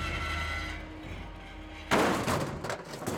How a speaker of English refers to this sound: Something heavy landed on the roof of the car, causing both the brothers to yell in alarm.